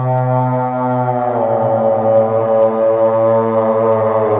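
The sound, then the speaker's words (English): The horns of a wagon blare balefully in one long, unbroken blast, echoing through a gap in the mountains: a loud, deep droning tone with a brassy, buzzing edge that swells slightly partway through. No voices are heard. “My blood ran cold as the horns of this wagon blared out balefully, echoing through the gap in the mountains and into our hideout.”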